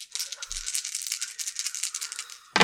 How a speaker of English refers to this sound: Make a hope roll. So I get 4 dice.